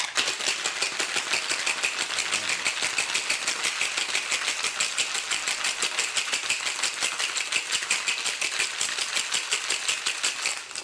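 A cocktail shaker rattles with ice while mixing a Palm Beach special cocktail, in a fast, steady rhythm for about ten seconds, a bright, continuous clatter of cubes knocking inside metal, with no talking over it.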